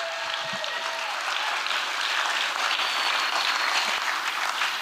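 An audience applauds after a story is told, clapping steadily for about five seconds, a dense, even wash of applause that stays loud throughout with no voices standing out.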